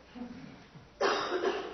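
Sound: someone coughing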